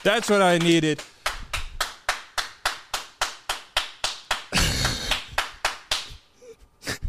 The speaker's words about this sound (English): Round of applause for the merch drop being live. There we go. That's what I needed.